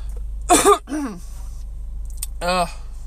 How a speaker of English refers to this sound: See, my coughing is starting to kick in.